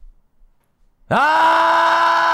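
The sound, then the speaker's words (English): After a second of near silence, a man lets out a loud, sustained yell with a rough, gravelly rasp, holding it steadily until the end. “That's just how I yell. Have a yell for us.”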